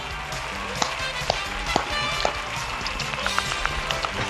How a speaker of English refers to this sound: Just walking down the aisle.